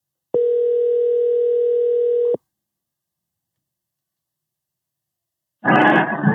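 A steady telephone dial tone hums for about two seconds as a phone call is placed, then cuts off into silence before a short, loud burst of noise arrives near the end.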